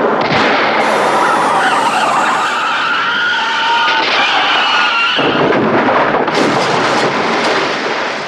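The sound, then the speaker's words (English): A car passing on a bridge has a tire pop and skids out of control, tires screeching, then smashes through a guardrail and crashes into the river below. Loud, dense noise throughout, with no talking. “Lastly, he records a passing car on a nearby bridge when suddenly a loud pop sound can be heard, and the driver loses control of the vehicle, which crashes through the guardrail and into the river below.”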